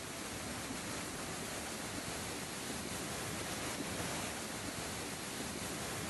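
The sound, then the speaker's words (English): A steady, loud roar of rushing floodwater from intense rainfall during Tropical Storm Hillary pours down a neighborhood street in Baja California, Mexico, turning it into a river: a dense continuous wash of churning water with no pauses and no voices. “The intense rainfall turning what appears to be a neighborhood into a rushing river.”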